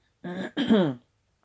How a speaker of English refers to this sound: Let me clear my throat a little bit.